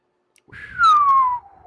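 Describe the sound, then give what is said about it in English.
A single loud whistle by a person whistling into a microphone, sliding gently downward in pitch and lasting about a second, with a faint low rumble underneath and no talking. “I was like, oh wait, I'm whistling to the mic.”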